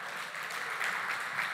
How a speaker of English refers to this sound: We clap in anticipation of what you're going to do today, that you're going to speak through me.